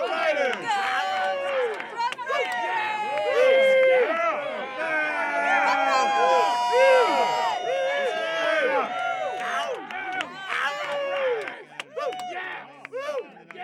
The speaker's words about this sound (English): Rough Riders 7 Fort Sarah, as we head into the halftime, let's get up our cheer squad. I see Rough. I see Riders.